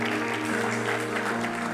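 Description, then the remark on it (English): A church audience claps for God during a sermon, a dense, steady burst of applause lasting under two seconds, with a faint low hum running beneath it. “I thought you are giving God a clap of it.”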